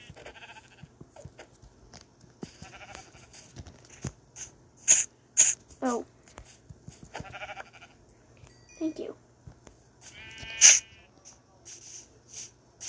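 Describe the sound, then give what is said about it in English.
Several short sheep bleats from a video game sound at irregular intervals amid scattered clicks and thumps of game activity, with a steady low hum underneath. “Great, that sheep just ran away.”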